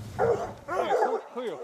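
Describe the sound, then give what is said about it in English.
Hunting hounds, let loose after the dogs pick up a lion's scent, bark and bay in quick overlapping bursts, several voices fairly loud, with rising and falling yelps carrying over an outdoor background. “And then, finally, after the dogs snuffle across the scent of a lion, they let loose the hounds.”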